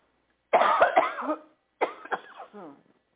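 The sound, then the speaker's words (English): Two harsh, raspy coughing fits from a person about to take cough syrup, separated by a short pause, each with a rough, throaty tail and no talking. “Let me take some cough syrup.”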